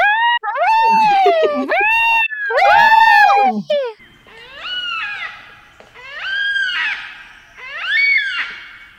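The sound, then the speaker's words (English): Yellow-tailed black cockatoo calls: five long, rising-and-falling wailing cries with a reedy, squeaky tone. Two loud calls come first, then three softer, evenly spaced ones, with no talking. “Yellow-tailed black cockatoos here.”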